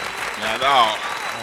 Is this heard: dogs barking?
no